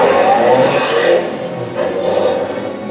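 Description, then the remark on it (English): A car engine roars loudly and steadily with a rough, broad rumble as the car drives away, easing briefly before surging again, with no voices over it. “He got into a car and roared away.”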